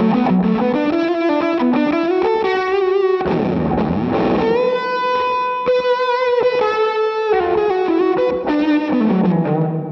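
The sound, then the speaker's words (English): A loud electric guitar lead through a thick fuzz tone plays a sustained melodic phrase with bends and vibrato, a brief gritty smear midway, and no voices. “Okay, I'm just gonna go, I'll go mix and match here, but let's say I kick on the fuzz and I just really want to accentuate a moment.”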